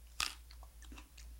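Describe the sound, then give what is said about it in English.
A single sharp crunch as someone bites into a piece of bok choy topped with cream cheese, followed by a few softer wet chewing sounds, with no talking. “All right, cream cheese on a bok choy.”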